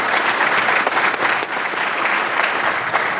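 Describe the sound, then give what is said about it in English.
Steady applause from a large convention audience fills the whole stretch, dense and continuous with no pauses, loud, with no voices rising above the clapping. “Katie, you stand up and maybe get a round of applause.”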